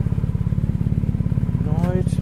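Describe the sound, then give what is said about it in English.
A motorbike with no one on it idles, a loud, steady low throbbing that chugs evenly throughout, with a brief voice rising over it near the end. “There's a motorbike, no one on it, but it is on.”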